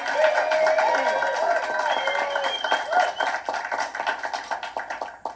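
An audience bursts into loud, steady applause mixed with cheers and whoops, the dense clapping gradually thinning into more scattered, individual claps toward the end.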